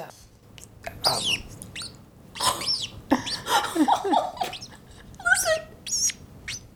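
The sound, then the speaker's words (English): A small female pet bird perched on a person's collarbone chirps in quick, varied bursts of sweet twittering and sliding whistles, pausing briefly between phrases over several seconds. “And I have a little bird sitting on my clavicle. She was making the sweetest little noises.”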